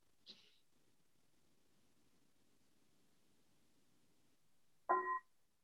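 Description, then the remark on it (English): A single meditation bell is struck once near the end, a bright ringing tone with clear overtones that is cut short, following a soft tap and a few seconds of quiet hush. “And I'll just invite one sound of the bell.”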